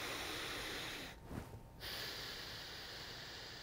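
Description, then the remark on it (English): Nostril breathing: a long, airy breath drawn in through the nose, a brief pause with a soft snort, then a steady nasal exhale. Quiet, with no talking. “But again, if the dynamic breath work isn't your thing, you can do nostril breathing.”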